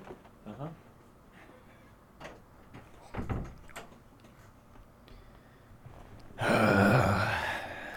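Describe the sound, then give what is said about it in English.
A door is opened: a few soft clicks and a heavier thump of the latch, then a louder, rushing burst of noise over the last couple of seconds. “Can you get a lock on your door, please?”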